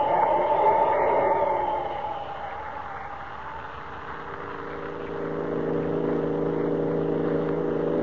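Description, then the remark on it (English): A car engine drones steadily as it drives along, a continuous low hum that is louder and rougher at first, then settles into an even, sustained rumble with no voices. “There are the headlights of a car, far in the distance.”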